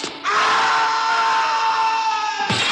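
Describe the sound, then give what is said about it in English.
A man's long, sustained, loud scream from a fall scene in a 1940s film, holding steady for over two seconds before cutting off abruptly, like someone falling away. “best fall in a while on Film Sack”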